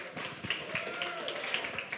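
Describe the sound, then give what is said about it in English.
Steady audience applause for Burger World, a dense, continuous wash of clapping with scattered sharper claps and a murmur of crowd voices mixed in, holding at an even, moderate level throughout. “Give a round of applause to Burger World.”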